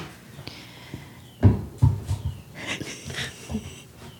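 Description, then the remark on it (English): A male dog makes small, breathy panting and snuffling noises in short irregular bursts with a couple of louder puffs, and no one speaks. “He just has to make a little noise so you know he's there.”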